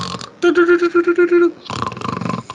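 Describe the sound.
A person loudly imitates snoring with the voice: a rapid, fluttering, throaty rumble lasting about a second, followed by a rougher, breathier snorting stretch.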